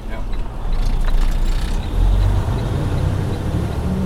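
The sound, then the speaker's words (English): Inside the cab of a self-driving Freightliner Cascadia semi truck cruising on Florida's Highway 27 with the Everglades on either side, a steady, heavy low rumble of engine and road noise fills the space, with light rattles and faint, indistinct voices. “I was sitting in the back of a cabin, on a bed actually, in a Freightliner Cascadia.”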